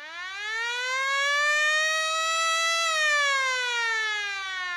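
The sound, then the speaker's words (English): A hockey period-ending siren wails loudly and continuously, its rich droning tone climbing in pitch at the start, then holding steady with a slight dip near the end. No one speaks. “And there's the siren to end the period and our podcast as well.”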